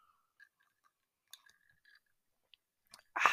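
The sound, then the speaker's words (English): Someone sips a cold drink: faint, scattered wet mouth clicks and small slurps, then a short louder breathy rush at the end. No talking. “Let me take a sip of my nice cold beverage first.”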